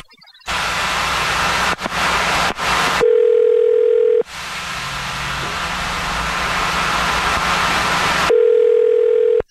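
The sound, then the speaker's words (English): A phone line rings back twice as a phone number is dialed, each ring a steady electronic tone lasting about a second, separated by long stretches of loud static hiss, with no voices. “I'm going to dial the phone number right now.”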